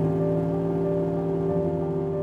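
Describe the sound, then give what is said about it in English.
A pickup truck engine starts and hums, a steady low rumble with a constant droning tone that holds at an even volume throughout, with no voices. “the house is knocked back to the present by the sound of a pickup truck starting.”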